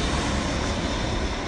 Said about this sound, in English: Oh no, here comes an airplane. That's not... This is just the nature of being in the studio, and having airplanes fly through the studio.